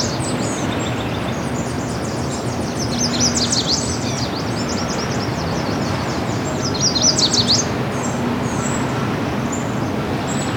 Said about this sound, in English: Yellow warbler.